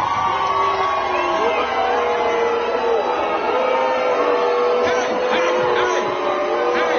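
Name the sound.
crowd jeering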